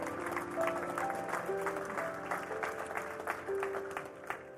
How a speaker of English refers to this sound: Let's clap for those folks who give their heart to the Lord.